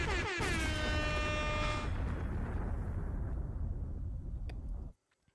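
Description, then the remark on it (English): A loud explosion sound effect, triggered by pressing an explosion button on a soundboard, erupts suddenly with a blaring, horn-like edge, then rolls into a long rumbling roar for several seconds before cutting off abruptly. No one speaks. “I didn't want to have to press my explosion button that much.”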